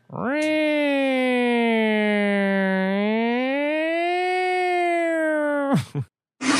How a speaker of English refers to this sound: What was that? Siren. Good grief.